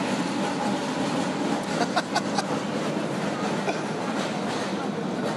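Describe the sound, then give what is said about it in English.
A number 47 tram in Budapest rolls past on its rails, a steady rumble with a brief cluster of metallic clicks and squeals partway through, the noise staying loud and even throughout. “That's the 47. That's the 47, yes.”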